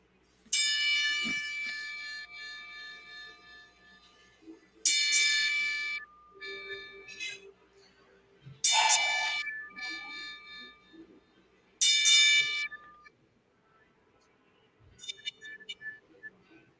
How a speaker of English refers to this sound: At this time, we pay homage to both Sean Milligan and Tracy Smothers with a moment of silence, and as we also toll the bell 10 times.